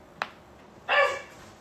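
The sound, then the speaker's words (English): A short, sharp yelp is followed a moment later by a single loud dog bark; no one speaks and it is otherwise quiet. “We got dogs.”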